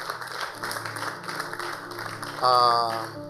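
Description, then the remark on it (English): A church audience at the Treasure Couples Forum claps for a pastor in a dense, steady patter for a few seconds, with a brief high tonal cheer or whoop rising over the applause near the end. “Please let me clap for him again.”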